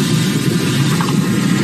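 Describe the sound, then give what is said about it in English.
A car moves through an automatic car wash: a loud, steady rush of spraying water over a low mechanical rumble, continuous throughout, with no voices. “The nuptials were performed once the vehicle began to move through the wash.”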